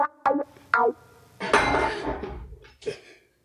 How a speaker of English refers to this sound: Caught my wine glass. And no more wine.